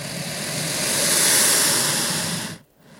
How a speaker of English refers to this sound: I didn't actually touch it. I just sort of waved it out in front of it. And it responded with a loud snort followed by this hissy noise. It's quite a remarkable sound.